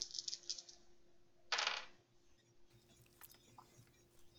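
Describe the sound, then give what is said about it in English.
Five ten-sided dice are rolled: a quick patter of small hard clicks, then a brief louder clatter as they tumble onto a table, followed by scattered faint ticks and taps. It is fairly quiet, with no talking. “That's 4 plus your drama token, so you're rolling nice. 5 dice.”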